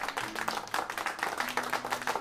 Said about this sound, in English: Now, you all have been rocking with me strong for about 3 episodes, so I definitely want to dedicate this round of applause to you.